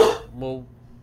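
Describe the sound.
A person imitates a dog with two short vocal barks: a sharp, harsh first yelp followed by a brief tonal woof, then quiet.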